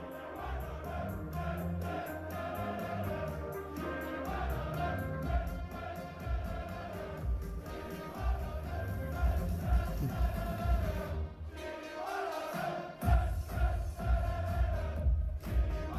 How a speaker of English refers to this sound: All right, I got the chant for y'all. The Genie Wijnaldum chant? Mm-hmm. Oh, it's incredible. Is it a video of, like, in the crowd singing it?